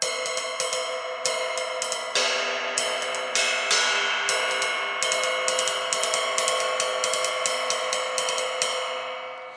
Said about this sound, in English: And this cymbal, I bought it, yeah, like I say, 91. And I used it almost exclusively up until I got this Istanbul deal, which was, 2000 and whatever it was, can't remember, 2007 or something like that.